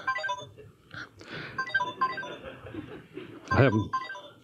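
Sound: telephone ringing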